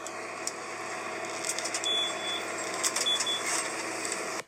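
Two thin, high-pitched electronic beeps, like a vehicle's reversing warning, sound about a second apart over a steady, loud engine or traffic rumble.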